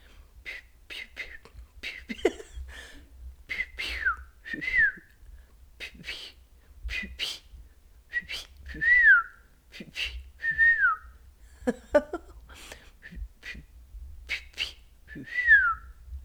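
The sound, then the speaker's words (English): A person practicing bird noises for a challenge whistles a string of short, high chirps and downward-sliding notes, imitating bird calls in uneven bursts, with soft breathy gaps between phrases. “Practicing making bird noises for our challenge today.”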